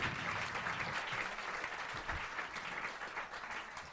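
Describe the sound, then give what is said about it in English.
Steady applause from an audience fills the whole stretch, a dense continuous wash of many hands clapping at moderate loudness with no pauses. “Guys, come on, you can keep clapping.”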